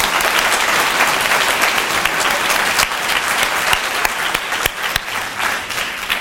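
A crowd applauds the panelists steadily, a dense wash of many hands clapping at a fairly loud, even level, with a few sharper individual claps standing out, and no voices heard.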